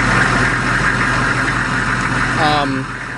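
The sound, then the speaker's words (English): A Humvee engine idles steadily with a low, continuous rumble and slight vibration, while a brief voice-like tone rises near the end. “It's a Humvee idling.”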